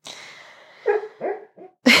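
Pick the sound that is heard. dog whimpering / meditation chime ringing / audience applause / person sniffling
dog whimpering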